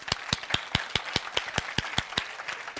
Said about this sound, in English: Oh, wait, while you clap your hands.